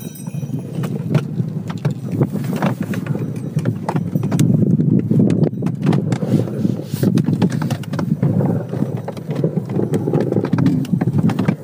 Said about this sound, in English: We're literally dashing through the snow in a one-horse open sleigh. That's true. Through the fields, snowy fields of Norway. You hear the horse bells? Where I grew up. There it is.